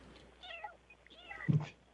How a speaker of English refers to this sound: One of the boxes is meowing. One of the boxes has a cat inside of it. It's going meow.